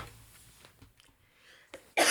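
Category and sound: human body sound, cough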